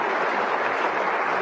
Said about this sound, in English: Before asking you to applaud once more for Juan, I want to invite everyone in the room, as well as those who are in our simulcast sites, to come to the reception on the lowest level of the Frist Campus Center.